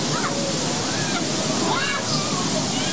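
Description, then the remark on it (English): A waterfall pours steadily, heard from behind it on a ride boat at the Magic Kingdom: a dense, hissing roar of falling water that stays loud and constant throughout, with faint voices barely audible beneath it. “This right here is the eighth wonder of the world. It is the backside of water.”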